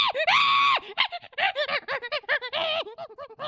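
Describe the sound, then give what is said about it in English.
An aggressive capuchin monkey called Darwin screeches: one long, shrill, piercing cry, then a rapid burst of choppy, high-pitched shrieks and chatters, loud and with no talking. “He seems unusually aggressive for a capucine.”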